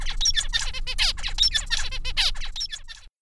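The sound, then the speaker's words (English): A songbird delivers a rich, complex song of rapid, varied chirps, trills and sweeping whistled notes, continuous for about three seconds, with no voices. “He's the bird with the less preferred song because it's a lot less complex than Mr. Wright's.”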